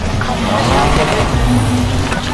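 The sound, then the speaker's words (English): A loud, steady car engine roars continuously with a faint tire squeal mixed in, sounding like a racing game's vehicle audio, with some low background voices. “Let me hear my car.”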